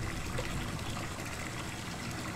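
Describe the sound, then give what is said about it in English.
Water runs and gushes in a steady, continuous rush, loud, with a low rumbling undertone and no pauses or voices, flooding a room and running up and down the walls. “Can't you hear the water running? The water is running.”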